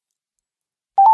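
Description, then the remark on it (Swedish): After a stretch of silence, a telephone ringing tone on an outgoing call starts: a steady, mid-pitched electronic tone that is fairly loud and cut off almost immediately. “Nu ringer jag.”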